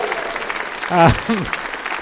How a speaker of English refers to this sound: So I'd like to give James Hingley a massive round of applause for his terrific work.